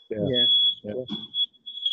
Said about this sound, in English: Smoke detectors are going off of my house. Oh, no. Someone else is cooking tonight. That's fine. Oh, no. You let someone else go. And boiling water? I never knew that boiling water would set off a smoke detector.